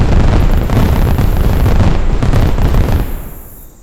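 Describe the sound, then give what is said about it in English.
A loud volcanic eruption roars in a dense wall of rumbling blasts and crackling bursts for several seconds, then quickly fades away. No one speaks. “The volcano exploded into 10 million fireworks.”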